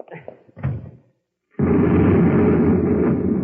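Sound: explosion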